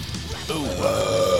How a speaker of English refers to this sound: Oh my goodness, this is gonna be the Burp Chronicles. I think it is.